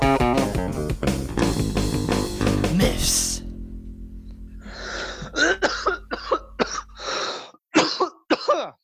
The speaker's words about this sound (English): good job there's not a cough going around.